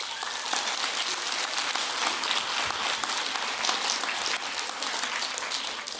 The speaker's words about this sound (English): Now, to the DARE graduating class of 2018, I want you all to give yourselves a round of applause.